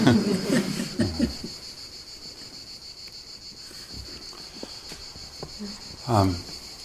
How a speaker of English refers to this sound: I feel like we should all bow to the crickets.